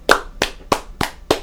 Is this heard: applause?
yes